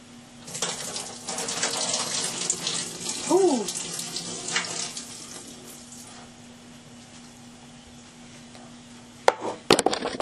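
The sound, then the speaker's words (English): Juice is poured out of ramen in a steady splashing stream for several seconds, then trails off, followed by a couple of sharp clunks at the end. “Actually, I'm gonna spill out the juice of this first.”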